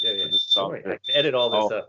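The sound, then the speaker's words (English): A high, piercing smoke alarm tone, set off by cooking, sounds in two long stretches separated by a short break, loud, with people talking over it the whole time. “And now my girl's cooking, the fire alarm's going off.”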